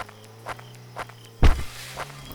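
Footsteps walk from an SUV over to a trash can at a steady pace, about two per second, with one heavier thudding step partway through. A faint low hum runs underneath.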